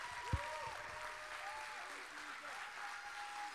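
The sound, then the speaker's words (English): An audience applauds with dense, continuous clapping that fills the whole stretch at a steady level, with a few faint sustained tones and murmuring voices mixed underneath. “Come on, give them a big, big clap.”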